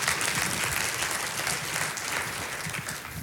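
An audience claps steadily for about three seconds, a dense, even wash of many hands with no voices rising above it.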